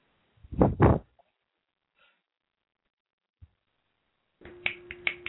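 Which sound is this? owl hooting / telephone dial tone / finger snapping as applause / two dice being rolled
finger snapping as applause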